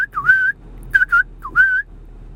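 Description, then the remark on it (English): A person whistles a brief, bright tune of a few sliding notes in three quick bursts, clear against a quiet background with no talking. “Hey, did you catch that whistle in the beginning? Let me do it again.”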